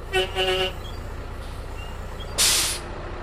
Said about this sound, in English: This tour bus, coming from downtown San Francisco, is carrying just a handful of the 2 million or so annual visitors to these forests.